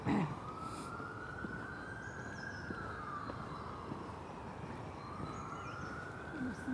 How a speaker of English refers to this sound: Sirens are busy today. That's a third.